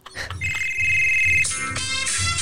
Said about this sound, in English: Yeah, because that's not it. It's sped up. It's sped up, dog. It's sped up. That's because someone's calling. That's his ringtone.